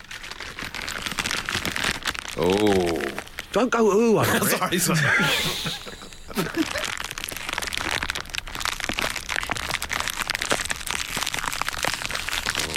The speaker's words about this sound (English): I've gone out there and I've had a little fiddle around with the Worksman's tools, and I've come back in with this. It's a plastic bag of screws and those little wooden pegs you get with flat pack furniture.